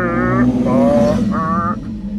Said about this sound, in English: Big motorbike.